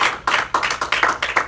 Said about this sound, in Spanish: Why don't we give a hand clap offering to the Lord? ¿Por qué no le damos un aplauso fuerte al Señor? Aleluya. Yo creo que lo podemos hacer mejor.